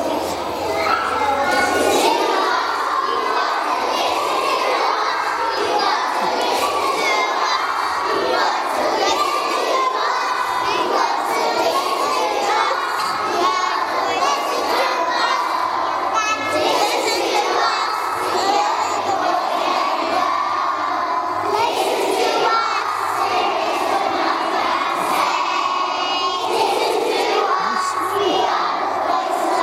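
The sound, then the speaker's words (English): A crowd of young infant-school children in a video clip, shouting and cheering together, loud and continuous for the whole stretch, with overlapping excited voices and no quiet gaps. “We've got some video clips here. I'm going to go through them.”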